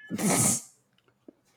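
cat vocalizing

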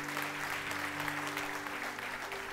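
loud audience applause

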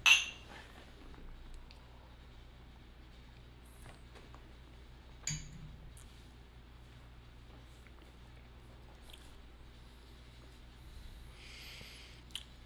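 glasses clinking

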